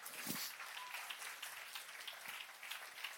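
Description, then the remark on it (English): A crowd breaks into steady applause, many hands clapping at once in a dense, continuous patter that holds at an even, fairly loud level throughout, with no voices over it. “Give me a hand clap.”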